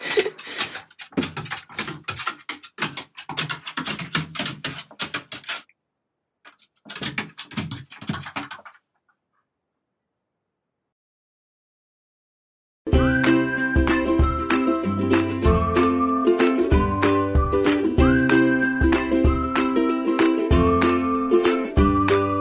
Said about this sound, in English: enjoy this little blooper outtake from our dog friend Penny, who you probably heard on today's show. Go, dog, go. She's barking.